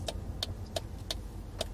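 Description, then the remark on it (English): A car rolls slowly with a low, steady engine rumble while a turn signal clicks in an even, quick rhythm as it pulls into a gas station to stop. No one speaks. “Yeah, I'll pull in.”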